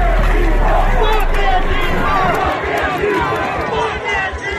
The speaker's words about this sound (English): A line of Proud Boys charges at the anti-fascist protesters.